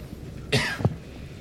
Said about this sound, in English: What are you doing coughing in my face?